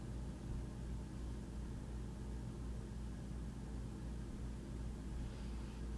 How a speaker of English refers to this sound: Yeah, dead air. All you can hear is the air conditioning. Is that heating, air conditioning, whatever's on it? I hear it. Whatever it is, it's probably going to conk out soon.